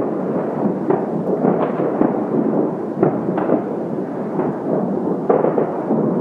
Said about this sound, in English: Team Dream opens with the sound of fireworks.